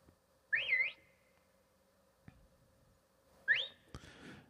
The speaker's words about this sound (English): And then an idea dawned on me. Maybe I should whistle back. So I whistled.